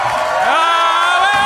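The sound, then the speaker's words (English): A loud, dense burst of crowd noise with a rising whoop that holds a high, sustained pitch over the din of cheering voices, all packed into about a second and a half. “The crowd is going berserk.”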